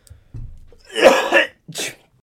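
A loud, harsh cough bursts out after a low breathy rumble, followed by a second shorter cough a moment later, with no talking around it.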